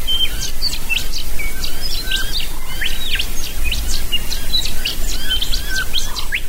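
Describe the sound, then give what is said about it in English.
An early morning dawn chorus of many birds in deep Mulga bush country about 400 kilometres north of Perth, chirping and whistling at once, dense overlapping calls and trills from several directions over a steady background hiss, with no one speaking. “Just been listening to some early morning birds.”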